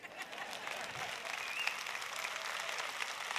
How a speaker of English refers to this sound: Can I get one amen? Amen. Maybe a half a hand clap.